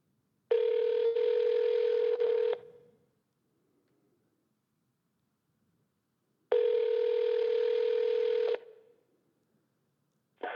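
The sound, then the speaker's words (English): A telephone rings twice as a call is redialed to the Second Amendment gun shop, each steady two-second ring followed by a few seconds of silence, heard clearly as if through the line, with no voices. “Let me get him back on the phone.”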